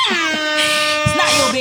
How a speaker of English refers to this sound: The air horn on that one?